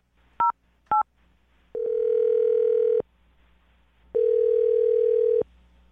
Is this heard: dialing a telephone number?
yes